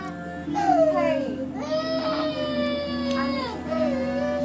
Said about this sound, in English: What's wrong with her? Well, because he started screaming and crying, so he sat there, and that's just screaming and crying. She's tired.